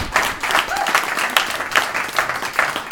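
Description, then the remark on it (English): An audience applauds a discussion panel, many hands clapping in a dense, continuous wash with a few sharper claps standing out, holding at a fairly even, moderately loud level throughout. “So let's give a round of applause to our panel.”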